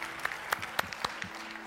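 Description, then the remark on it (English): A group of people claps their hands in praise to the Lord, a dense patter of many overlapping claps with a few sharper, louder strikes standing out, steady and moderately loud with no voices. “So let's give the Lord another hand clap of praise for all those souls that just came into heaven today.”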